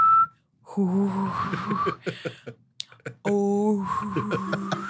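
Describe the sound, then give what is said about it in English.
Someone hums and whistles at once, voicing an eerie, wavering sci-fi tractor beam effect in two sustained bursts, preceded by a brief whistle note. “I think Jim Carrey says tractor beam and then makes that noise”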